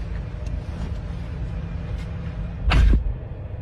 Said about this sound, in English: Let me just get the door for you. Okay.